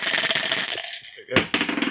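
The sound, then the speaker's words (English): Dice rattle and clatter rapidly across a hard surface in Cardiff, a dense burst of small clicks that briefly stops before a sharp knock and a final short rattle. “I actually brought the dice with me all the way to Cardiff.”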